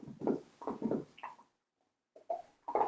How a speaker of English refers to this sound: So our two fun. Dogs are one sleeping here and the other is chewing on the bone profusely. It's very nice. Two different personalities coming forward right now.